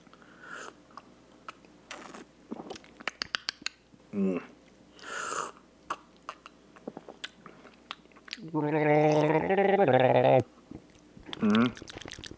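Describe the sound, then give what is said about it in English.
Someone gargles a mouthful of lime-flavored beer during a tasting, a bubbly, throaty rattle lasting about two seconds, followed by a shorter gurgle, with scattered sips, clicks and mouth noises beforehand. “Yeah, with this one, you definitely need to get a good gargle in there.”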